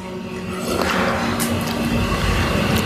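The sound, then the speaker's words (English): A person slurps a hot cup of pu'er tea in a long, wet, airy draw, a steady hissing suck of liquid with a few sharper bubbly bursts, moderately loud and with no talking. “You indeed heard me slurping.”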